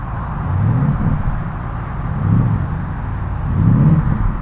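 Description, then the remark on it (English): The 4-litre V8 engine of a Porsche Panamera Turbo S E Hybrid Sport Turismo estate car rumbles steadily, its deep low growl swelling in three rhythmic surges as if being revved gently. No one speaks. “That is the unmistakable sound of the Porsche V8 4-litre engine that is part of the motive power of this Porsche Panamera Turbo SE Hybrid, the Sport Turismo version.”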